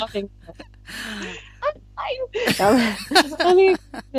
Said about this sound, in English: having a coughing fit. Are you okay?